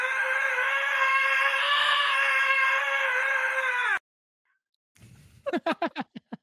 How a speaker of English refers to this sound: Nice. I thought that scream was funny.